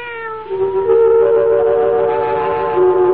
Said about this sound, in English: Meow.